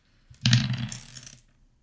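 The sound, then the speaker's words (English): Four-sided dice (D4s) are rolled for damage and tumble and clatter across a hard tabletop in a quick burst of bright rattling that lasts about a second, then settle into quiet. No one speaks. “So I need to make a dexterity saving throw, and if you want to get these D4s ready again.”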